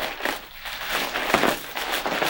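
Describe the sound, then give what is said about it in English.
Crinkling of an almost deflated happy birthday foil balloon being handled, a continuous run of bright, crackly rustles that swell and fade irregularly over a couple of seconds, with no talking. “It's a happy birthday foil balloon for anyone who is wondering.”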